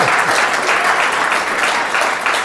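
A crowd applauds steadily and loudly, a dense wash of many hands clapping at once with no break for the whole stretch, and no voices standing out.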